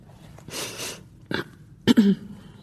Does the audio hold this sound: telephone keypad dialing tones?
no